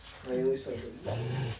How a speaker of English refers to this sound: Oh, they're about to fight. I like how cute your dog is when he jumps at her.